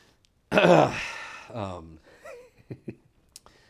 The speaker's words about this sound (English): I'm like running out of breath because I'm all fat and COVID-y. I'm like talking. Can you hear me breathing over here?